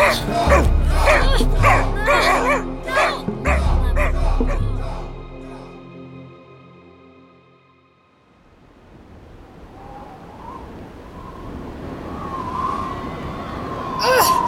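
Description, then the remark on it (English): A dog barks loudly and rapidly at the top of a dam in a steady string of sharp yelps, then goes quiet before thin, high-pitched whimpering rises over a low background rumble. “Bring the agent and the dog. No! Doggo! No!”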